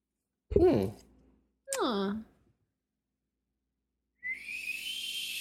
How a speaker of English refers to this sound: It is a kettle boiling.